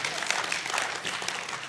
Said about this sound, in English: Yeah, you can clap for Michael. That's awesome.